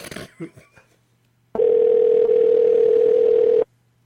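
telephone dial tone

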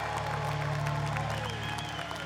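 audience clapping and cheering

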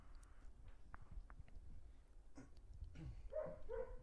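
dogs barking

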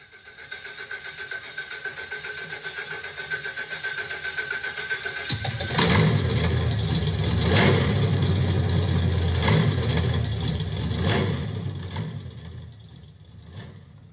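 car engine cranking

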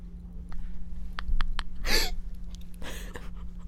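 deep breathing

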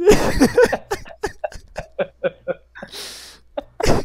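coughing

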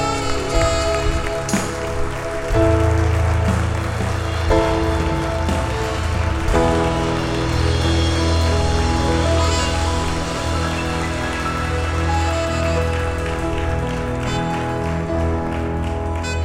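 audience applause

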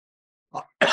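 cough

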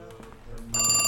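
telephone ringing

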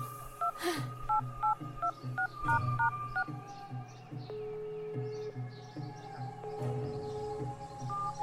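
telephone number being dialed

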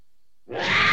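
cat meowing

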